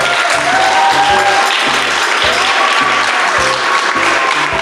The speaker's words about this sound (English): Another applause.